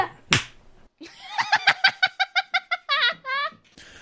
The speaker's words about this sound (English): The gang is slap happy up here in the studio tonight, so I think I'll just slap them and they'll be a little happier.